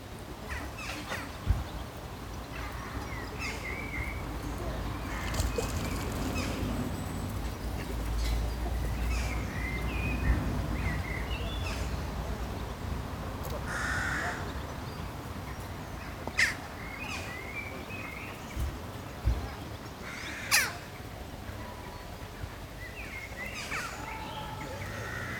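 Steady outdoor ambience at a duck pond with a low rumbling wash, scattered bird calls and occasional crow-like caws popping out above it; no one speaks.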